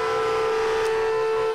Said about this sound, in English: Amen. Let's give him a honk of praise today.